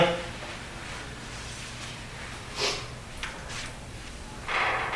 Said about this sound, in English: They found in the garage scratching noises, which I do have for you, and ladder rattles